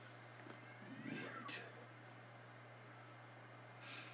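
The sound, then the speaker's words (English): Two neighbour cats fight, yowling and caterwauling in a brief, strained outburst outdoors in a backyard, faint over a steady low hum and background hiss, with no one talking. “All right, sounds like we got a couple of fighting cats in the back backyard there.”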